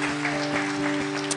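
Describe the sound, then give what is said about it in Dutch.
Audience applause for the band: a dense, steady wash of many hands clapping at an even loudness throughout, with a low steady hum running underneath. “So, can we give the band a hand?”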